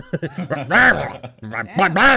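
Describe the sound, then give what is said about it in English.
A person mimics a feral wolf growling back with a series of rough, throaty vocal bursts that rise and fall in pitch, building to two louder, drawn-out snarls. “And I'm going to say this guy's kind of feral at this point. And he growls back.”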